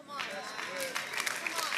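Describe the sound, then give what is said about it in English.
A polite, sparse golf clap from an audience: light, scattered hand claps at an uneven rhythm, fairly quiet, with murmuring voices mixed underneath. “No, no, no, that's not a golf clap line.”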